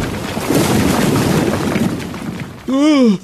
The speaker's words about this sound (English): And with that, Sun King lifts up the wounded henchman and smashes through the wall into the taxicab garage.